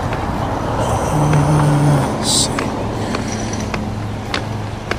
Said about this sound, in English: Looks like that car is stopping. Oh, they're stopping for a stop sign, okay.